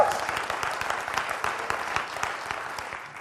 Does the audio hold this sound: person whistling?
no